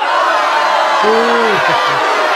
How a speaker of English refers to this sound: Have we got that booing? I need crickets. That booing. Yeah, put the booing thing. That'll do it.